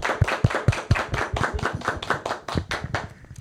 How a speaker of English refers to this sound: Let's give a round of applause for today's episode.